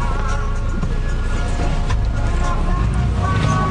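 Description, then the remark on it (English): A city bus carrying passengers rumbles steadily through the streets of Suva, Fiji, its engine droning loud without pause, with faint, indistinct voices murmuring beneath the noise. “On this bus wending its way through the streets of Suva, what stands out most, far more than their cultural diversity, is the passengers' youthfulness.”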